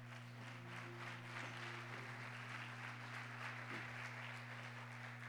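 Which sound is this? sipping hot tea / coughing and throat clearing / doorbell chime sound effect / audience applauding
audience applauding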